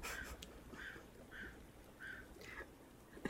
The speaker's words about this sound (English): The crow is real.